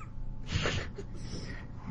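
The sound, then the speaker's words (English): A cat named Kitty lets out a single short meow, somewhat faint and slightly rough, over a low steady background hum with no one speaking. “Kitty just wants to be a part of the discussion.”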